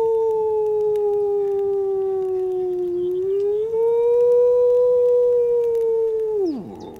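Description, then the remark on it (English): A single long, steady wolf howl holds one pitch for several seconds with a slight dip and rise. It ends in a quick downward slide and stands loud and alone, with no talking. “Can we hear a bit of the wolf”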